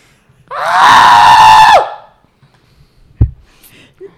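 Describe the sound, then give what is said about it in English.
A person imitates an indigenous scream whistle with one loud, sustained, piercing wail lasting over a second and ending abruptly, followed by a brief thump and quiet. “Or have you guys heard like that indigenous scream whistle?”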